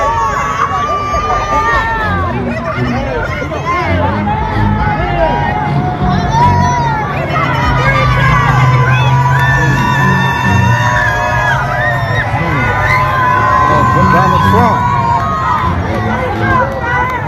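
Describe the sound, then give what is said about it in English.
A loud crowd shouts "free Trump" and cheers continuously as a police procession passes, many voices overlapping in a dense, energetic roar with rhythmic chanting, as traffic rumbles underneath and the noise sweeps past. “So you can just hear them all shouting, free Trump, as they go past.”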